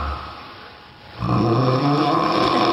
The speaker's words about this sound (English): That's you. Hey, can we talk about this? How come you don't get a mouth guard like I did? Because it's temporary. My snore is temporary. It's going to go away.